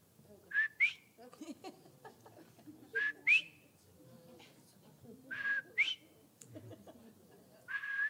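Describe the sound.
An elderly man sitting in a tire shop whistles short, bright melodic phrases with rising swoops, repeating roughly every two to three seconds, clear over a murmur of background noise and chatter.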